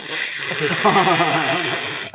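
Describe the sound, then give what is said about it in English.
A person imitates, with their voice, the fart of a cop in jail in Japan, making a single buzzy, wavering raspberry that holds steady for about two seconds, with a breathy hiss over it. “How did their fart sound?”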